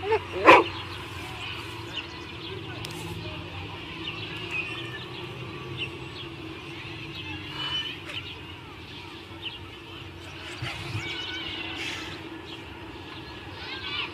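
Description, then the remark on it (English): A dog gives one sharp, loud bark right at the start, then a few quieter yips follow at scattered intervals over a steady background hum. “Look at the cute dog.”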